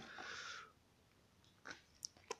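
A soft, airy slurp of someone sipping coffee, followed by a few small clicks and swallowing sounds spaced out over the next couple of seconds. No one speaks.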